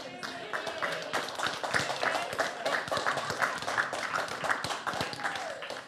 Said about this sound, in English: Are people clapping for this?